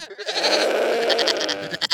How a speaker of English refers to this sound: There's a goat. It makes a very... What is like the name of the noise that goats make? Like a bleat? Like a... Yeah, there's like a lot of bleating.